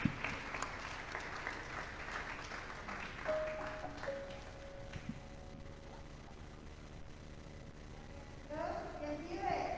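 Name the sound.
audience applauding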